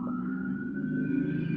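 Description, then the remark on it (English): A passing police car's siren holds a long, steady wailing tone that creeps slightly upward in pitch as the car takes a long time to pass, over a continuous low traffic rumble, with no one speaking. “There's, like, a cop car passing and he's taking forever to pass.”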